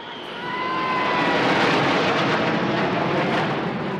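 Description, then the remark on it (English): A roar of the Red Arrows aerobatic display jets passing overhead above the Royal Courts of Justice in Westminster, London, on a hot sunny day, marking the King's official birthday and Trooping the Colour; a broad rushing engine noise that swells within the first half second and stays loud and steady, with faint whining tones at first. No voices. “Directly above them, the famed red arrows flew past with plumes of red, white and blue trailing behind them to mark the King's official birthday and the trooping of the colour.”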